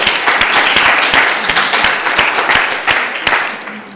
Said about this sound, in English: Fantastic. Well done. I think she needs a round of applause for that.